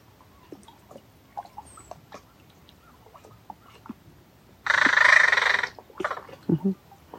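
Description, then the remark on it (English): A crow gives one raspy, drawn-out call followed by a couple of shorter, gentler calls, soft and almost purring-like rather than an alarm call, with faint clicks and rustling in the quiet before. No one speaks. “Did you hear the softness in the crow?”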